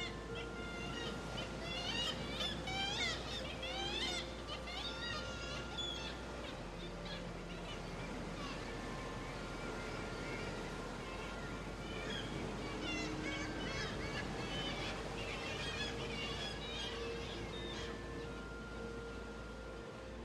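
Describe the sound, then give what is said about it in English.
A dense chorus of kittiwakes calling over and over from a seabird colony at Skellig, shrill, plaintive repeated cries overlapping and echoing off vertical black sea-cliff rocks against a steady low rumble of surf, with no voices. “Kittiwakes, onomatopoeic, because they say kittiwake, kittiwake.”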